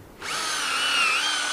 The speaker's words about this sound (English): And yeah, when you tap, you want to have your drill bit at a slight upward angle into the tree.